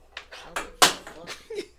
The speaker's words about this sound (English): What happened? My phone charger came unplugged. And it knocked over both sodas over. Both of our sodas over.